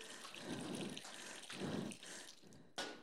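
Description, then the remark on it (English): Water pours in repeated surges, splashing and trickling with a steady watery hiss, then ends with a brief sharp splash near the end; no voices. “And it might get a bit messy and the water might fly everywhere.”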